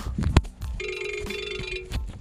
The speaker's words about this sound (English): excuse me about that. That's what happens when you don't turn your phone off.